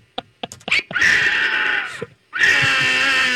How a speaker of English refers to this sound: What the hell is that animal? Is that a cat? Bobcat. Yeah. Bobcat call.